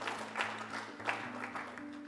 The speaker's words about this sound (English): yes, we should be clapping.